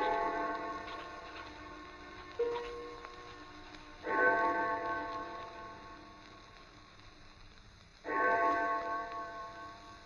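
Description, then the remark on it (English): The church clock of St. Jude's strikes four o'clock slowly and evenly, each resonant toll ringing out and fading before the next, about four seconds apart, sounding distant with no voices. “I had no idea how long I worked until I heard the clock of St. Jude's in the distance. It was 4 o'clock, and I had started just after breakfast.”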